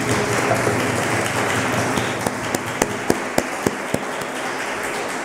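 A crowd applauds to thank a member of a small prayer team, in a steady, dense wash of clapping. It thins toward the end, leaving a handful of sharp, evenly spaced single claps before fading.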